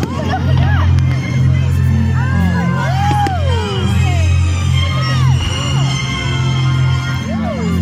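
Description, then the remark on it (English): A big outdoor crowd at a Star Wars fireworks display in Shrewsbury murmurs and cheers under a steady low rumble, while rising and falling whistles streak overhead and a few faint pops sound. “Now that's what I call a firework display.”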